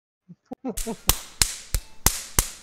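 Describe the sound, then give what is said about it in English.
A voice mimics a jackhammer, starting with short grunting vocal sounds and then delivering six sharp, loud percussive bursts at a steady rhythm of about three per second. “And then one of those. Like a jackhammer.”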